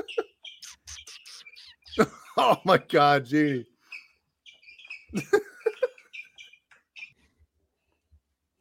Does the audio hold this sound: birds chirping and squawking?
yes